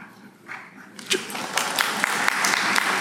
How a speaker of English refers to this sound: Well, we're going to just call different groups collectively, and then we'll have one applause for all. So thank you for your service currently in the armed services.